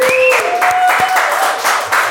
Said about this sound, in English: Vindicated. Mm-hmm. Good. Yeah. We can clap up for that.